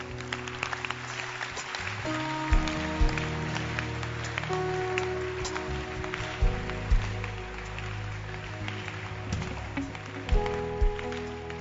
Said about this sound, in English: Clap your hands.